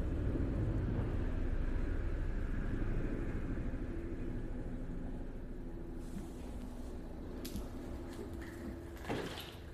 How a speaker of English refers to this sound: literally a helicopter landed on the lawn outside the elementary school that's outside of my house